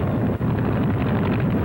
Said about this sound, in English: Next comes the training flight, so let the motor roar.